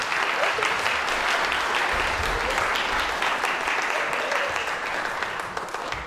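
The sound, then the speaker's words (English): Sustained applause from an audience, a dense and steady patter of many hands clapping at once, fairly loud and continuous for several seconds before easing slightly at the end. “Shall we give them a round of applause?”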